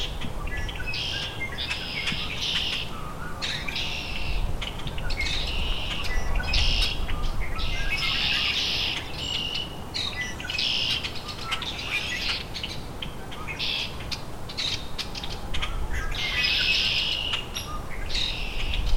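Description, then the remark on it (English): A hairy woodpecker's call rings out amid the dense, continuous chatter of a large flock of common grackles and red-winged blackbirds, with bursts of squeaky calls rising and falling in waves and no voices. “Hairy woodpecker.”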